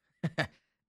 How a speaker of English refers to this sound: I hate cough. Man, this is the one thing I hate about being sick is that you start coughing at the most inconvenient time. I could stop recording and I won't cough at all.